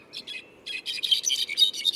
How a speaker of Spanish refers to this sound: ¿Cuántos pájaros creen que hay ahí? Parece toda una orquesta, pero es solo uno, el clarín jilguero.